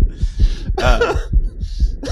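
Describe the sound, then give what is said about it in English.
A recorded heartbeat of close, muffled low thumps repeating quickly and somewhat unevenly, with a harsher whooshing burst rising between beats partway through; no one speaks. “So, you know, that sound, if you were just listening to it, it sounds like someone's heart beating.”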